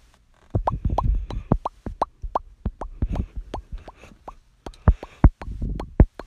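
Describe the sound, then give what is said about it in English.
A voice imitates an octopus sneaking out of its tank with a quick, irregular run of wet mouth pops and plops, some louder than others, over a soft, low gurgling murmur. “going to make the sound of an octopus sneaking out of its tank.”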